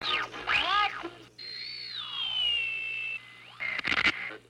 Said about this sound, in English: Shh, listen. There's a voice hidden in the static.